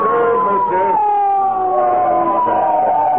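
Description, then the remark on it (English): A loud emergency siren on a police motorcycle wails steadily as it pulls a car over, its pitch gliding slowly downward as it winds down, with a faint hint of voices beneath it. “Maybe it's a fire engine”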